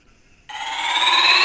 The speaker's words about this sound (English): There's a short one there. Little beep boop.